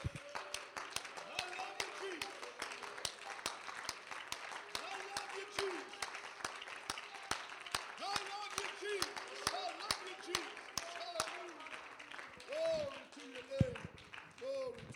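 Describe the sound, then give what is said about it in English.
An audience at a church service claps and applauds in praise of the Lord steadily for several seconds, a dense crowd of hands with scattered voices and cheers mixed in, fading toward the end. “Let's give him a hand clap of praise in this house.”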